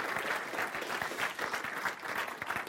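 An audience at a Christian gathering applauds after a live testimony, a dense patter of many hands clapping at once at an even, moderate loudness with no voices breaking through.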